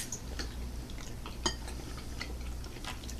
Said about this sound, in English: We're going to edit out this lull of us chewing. This ravioli is delish.